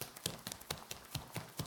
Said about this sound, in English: But these are different. These footsteps are fast, like someone is running in the back hallway.